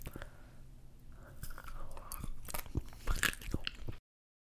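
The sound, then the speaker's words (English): Crunchy bites into a snack, with a few sharp crackling crunches followed by chewing, fairly loud, with no speech over it. “For the first time ever, I will do the crunch.”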